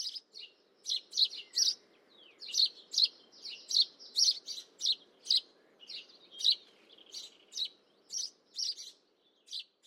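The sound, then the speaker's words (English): Birds chirp in quick, repeated bursts of bright, high tweets, a steady rhythmic chorus with a soft low background hum and no talking. “The power of birdsong”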